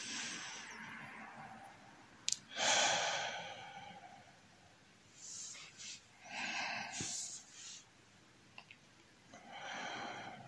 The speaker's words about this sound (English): And we can begin with a few deep breaths, breathing in and out through your belly.